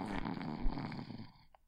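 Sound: snoring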